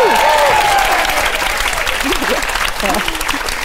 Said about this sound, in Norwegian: engasjert fødselslege og gynekolog, levert inn PhD-en sin I dag. Vi må klappe for det!